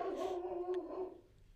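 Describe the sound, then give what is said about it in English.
A dog barks outside: one big, drawn-out, tonal cry lasting about a second, moderately loud and steady, then trailing off. No one speaks. “Dog bark outside. My dog.”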